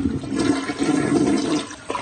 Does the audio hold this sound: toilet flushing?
yes